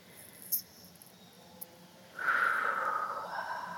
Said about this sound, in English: And just feel your body where you're sitting in the chair right now. Take a deep breath. I'm breathing with you.